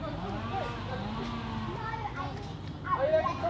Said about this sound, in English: And there's a few kids playing football in the Wimbledon Chase Primary School field.